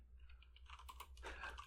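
Rapid, irregular computer keyboard clacking, moderately loud, a flurry of key taps that speeds up and clusters toward the end, over a low steady hum.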